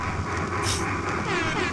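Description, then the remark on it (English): A passing train rumbles steadily with low mechanical noise, and a brief hiss of air cuts through partway. It is a short recording of real train sounds played from a record, with no clear talking. “It's real train sounds.”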